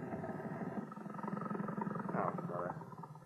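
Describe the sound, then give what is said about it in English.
A boat engine being raced while idle at anchor in a harbor, a loud, steady, throaty roar with a layered low drone that surges slightly louder toward the end before easing off. “Now, can't we give the engine a rest? Just racing it here, anchored in my own harbor, is too much like treading water when I really want to be in the swim.”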